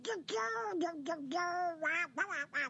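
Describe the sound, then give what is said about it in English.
The raspy, quacking cartoon voice of Donald Duck sings a short, bouncy melody in several quick phrases, loud, with no other sounds around it. It is a human voice imitating a duck. “It's Donald singing.”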